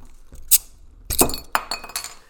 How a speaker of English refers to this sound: Well, no, let's open it up. Let's crack it open. Let's see how many ghosts come out of the bottle.